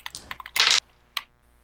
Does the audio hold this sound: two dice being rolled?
yes